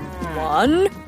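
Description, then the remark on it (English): A single cow moos once, loud, a rich, drawn-out low call that bends upward in pitch before cutting off abruptly, as cows walk up a ramp into a livestock car. “As the cows walked up the ramp and into the livestock car, Gordon began to count them.”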